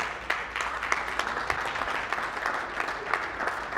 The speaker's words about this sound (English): Hallelujah. You clap now.